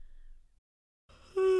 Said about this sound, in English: Wow, I'm yawning. Wait, we should leave that in. I'm yawning.